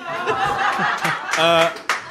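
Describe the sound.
A short burst of applause from a group, steady loud clapping mixed with cheering voices and some laughter throughout.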